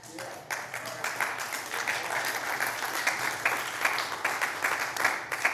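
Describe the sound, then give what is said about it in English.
A church audience applauds steadily throughout, a dense wash of many hands clapping at moderate loudness with no pauses, and a faint voice or two mixed in. “And I know that, I don't want to discount your applause, but I know that that can upset some.”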